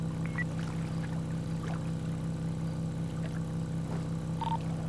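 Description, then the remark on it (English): A steady, low engine drone hums throughout from a marine enforcement boat departing Sandy Boat Dock on water, with faint splashes and small chirps scattered above it; no one speaks. “Five Delta One, show me departing from Sandy Boat Dock as Marine Vehicle Enforcement.”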